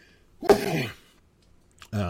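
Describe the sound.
One loud sneeze, a sharp burst that trails off over about half a second, then a brief quiet before a person starts talking.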